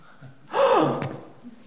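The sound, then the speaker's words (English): A single voice imitates the sharp, breathy gasp of wedding guests, a quick rising intake of air lasting about half a second, fairly loud, ending with a small click before quiet returns. “I literally heard gasps.”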